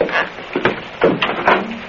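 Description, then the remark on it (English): A locked storage room door is rattled and jiggled several times in quick succession, with wooden knocks and handle clatter as it's tried but stays shut. Moderately loud, no voices. “Hey, where's this other door go to? Well, that's just a storage room. I keep it locked.”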